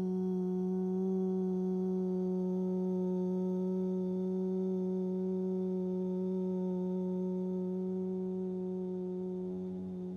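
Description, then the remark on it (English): A single long chanted hum, the throat chakra mantra sound 'hum', a low steady voiced tone rich in overtones, sustained unbroken for about ten seconds before gently fading, with no other sounds. “So if you feel anything that needs to be released, pulling any threads in your throat chakra, and that would be the sound of hum.”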